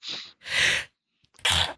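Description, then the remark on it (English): Loud sneezing in a quick series of three breathy, explosive bursts separated by brief pauses, with no talking around them. “By the way, don't ever hold a sneeze in.”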